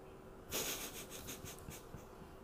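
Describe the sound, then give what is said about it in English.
A pen scratches across paper in a series of quick, rhythmic strokes, starting with a louder scrape and continuing as short, evenly spaced scribbles, with no one talking. “I need a pen and paper here, man.”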